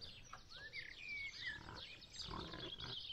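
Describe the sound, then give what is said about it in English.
A white pig squeals over and over as men lift it, cage and all, from a wagon: shrill high-pitched cries rising and falling in quick succession, fairly loud against a noisy, scuffling background. No one speaks. “So she began to squeal. And she squealed and squealed and squealed and squealed until she was set free in the field with the brown pigs.”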